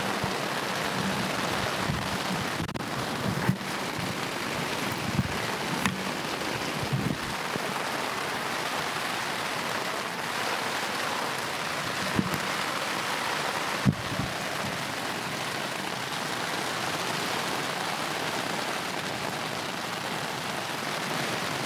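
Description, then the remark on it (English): Heavy rain from a big storm with lightning and strong wind pounds steadily on a tent, a dense constant hiss and patter overhead, with occasional sharper drops and gusts rising briefly in the downpour. “What a big storm.”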